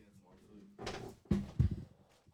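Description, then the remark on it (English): A door swings and is shut: a scraping rush of movement followed by two heavy, low thuds in quick succession, with faint voices murmuring before it. “Only wait, don't shut the door.”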